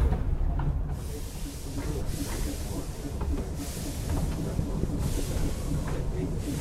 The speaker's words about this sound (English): Again, the hiss of steam. The rattle of coaches. Not bad from an engine built in Leeds in 1904.